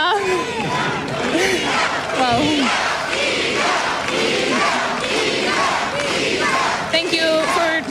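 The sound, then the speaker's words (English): A large tennis crowd, including Polish, Mexican, American and Canadian fans, roars and cheers continuously for Iga Świątek, a dense wash of many overlapping voices with shouts rising above it, loud and sustained for the whole stretch. “Thank you for cheering, for watching.”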